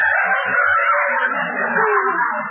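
A single loud rooster crow rings out, one long drawn-out call lasting a couple of seconds and trailing off slightly lower at the end, with no talking.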